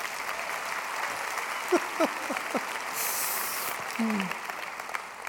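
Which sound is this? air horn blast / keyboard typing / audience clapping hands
audience clapping hands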